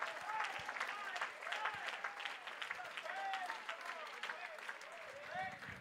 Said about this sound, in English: Somebody ought to recognize today that God has been good to you. Come on and clap your hands all over this.